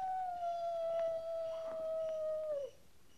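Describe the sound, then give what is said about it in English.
A single long coyote howl, a sustained clear tone that slowly sinks in pitch before dropping off abruptly near the end, heard alone with no other sounds. “That's just a coyote. Just a coyote.”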